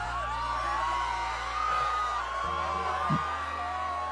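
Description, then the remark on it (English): Sustained screaming from several voices in the background wavers on without a break, rising and falling in pitch over a steady low hum, with no speech in the foreground. “So, yep, pay no attention to the screams in the background.”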